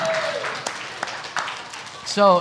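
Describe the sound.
Audience applause: a steady wash of many hands clapping at moderate loudness, with a few sharper claps standing out, and a voice speaking briefly near the end.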